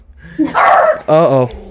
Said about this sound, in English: Oh, there's my dog.